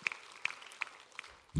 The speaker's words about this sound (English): Can everybody clap for Andy tonight?